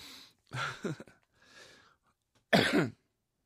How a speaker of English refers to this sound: I'm being distracted by coughing. My brain is being, I'm super ADD, so maybe me coughing is kind of like, you know, accidentally bumping the CD player and having it skip to a different song.